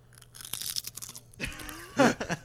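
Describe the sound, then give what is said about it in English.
Loud crunching of a crisp, salty and hot snack: a cluster of crackly bites followed by a heavier burst of chewing crunches, with no talking. “That's that crunch.”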